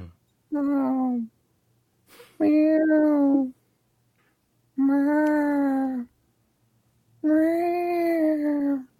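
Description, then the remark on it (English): A human voice imitates a cat meowing four times in a row, each drawn-out, wavering meow separated by short pauses, fairly loud. “And then here's the cat noises.”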